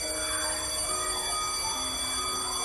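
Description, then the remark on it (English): A school bell rings without pause, a steady, bright metallic tone holding at an even loudness for the whole stretch, with no voices. “Matt waited for the school bell to ring so he could head home.”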